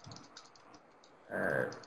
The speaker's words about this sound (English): Someone is typing somewhere. Sorry, I think that was me. I forgot to mute myself.